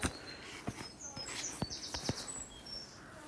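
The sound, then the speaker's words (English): Birdsong outdoors on a muddy headland at Stackpool: a scatter of high, thin chirps and short whistled notes from a few birds, fairly soft, with occasional sharp clicks and light background rustle. “that's bird song.”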